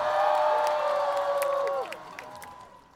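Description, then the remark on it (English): A crowd of race fans cheers loudly as a dragon swoops down near them and showboats, with a sustained whooping cry over scattered claps. The cry bends downward, and the cheering fades away over a few seconds. “The dragon swooped down near the crowds and even did a little showboating in front of the fans. And the crowds loved it!”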